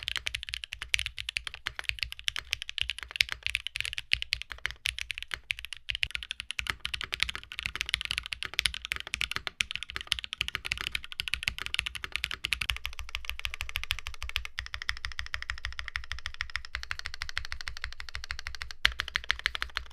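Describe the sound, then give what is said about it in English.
Steady, rapid typing on a mechanical keyboard with a stiff top-mount build, its plate assembly screwed to the top chassis without an O-ring, dense clicky-clacky keystrokes continuing throughout, with no voices. “The top mount is just screwing the plate assembly to the top chassis and foregoing the O-ring. It offers a stiffer experience and a different sound.”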